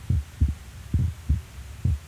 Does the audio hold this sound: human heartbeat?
yes